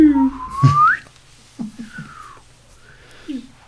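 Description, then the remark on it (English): Someone whistles a quick, loud, upward-sweeping glide in imitation of a slide whistle, followed by a few softer, shorter whistled slides trailing off. “I wish I had a slide whistle.”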